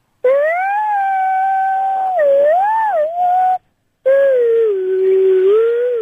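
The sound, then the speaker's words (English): A child hums the Doctor Who theme tune, high-pitched and wavering, in two long sustained phrases separated by a brief pause, with no talking. “More of a hum or a whistle.”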